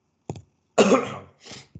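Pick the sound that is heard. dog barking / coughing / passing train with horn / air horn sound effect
coughing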